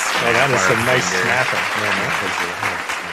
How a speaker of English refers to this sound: You guys remember this show, Kids Treat? Are you guys too young for that? Where they clap over their heads? Yeah. Or it was a kids game show and they clap like this.